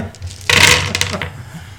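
A burst of dice from a green and black set clattering onto a table, several quick rattling clicks that settle within a second, fairly loud, with no voices.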